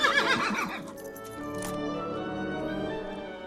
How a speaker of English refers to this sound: Good horse. Bad horse.